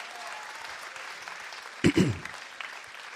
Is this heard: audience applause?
yes